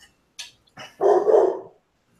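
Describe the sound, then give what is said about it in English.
A black lab puppy barks: a couple of quick, soft yips lead into one loud, drawn-out bark, with no one talking. “Yeah, the big giant barking noise behind me, that would be my black lab puppy.”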